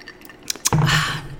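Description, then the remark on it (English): Two soft clicks, like a mug being lifted, lead into a drawn-out, airy slurp as someone sips coffee, lasting under a second. No one speaks. “So let me sip my coffee.”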